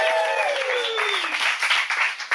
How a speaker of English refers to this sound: Okay, so a bartender and a house husband. Let's give him some applause!